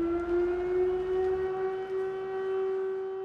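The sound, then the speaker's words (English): An air raid siren wails steadily at a sustained pitch in the frontline city of Kupiansk, loud and continuous across the whole stretch, with a low rumble underneath and no voices. “Days are punctuated with artillery shells and sirens.”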